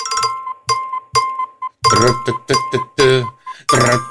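A chirping alarm clock tone: a few short, bright electronic chirps spaced apart, then a faster, busier run of warbling, birdlike trills, loud and steady over a thin high tone.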